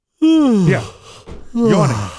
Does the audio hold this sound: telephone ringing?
no